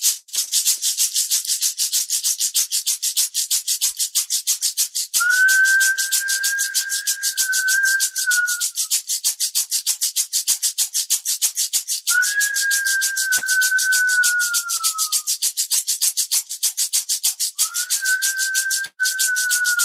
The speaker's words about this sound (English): And I'll just do a little bit of rattling and whistling while we do this.